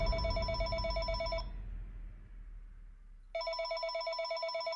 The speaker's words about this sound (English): And about 12:30 at night, the phone rang.